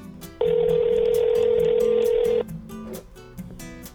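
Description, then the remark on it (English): An outgoing phone call to a rehab's phone line ringing: one loud, steady electronic ring tone lasting about two seconds, with faint line hiss before and after it. “Yeah, why don't you give them a little ringy dingy?”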